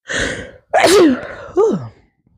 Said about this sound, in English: I feel the sneeze coming.